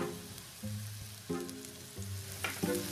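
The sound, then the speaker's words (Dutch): Fresh onions sizzle steadily in a pan in a kitchen, a continuous crackling hiss with low tonal hum and a few clanks of utensils stirring, moderately loud with no talking. “Zo, daar gaan ze, de verse uitjes.”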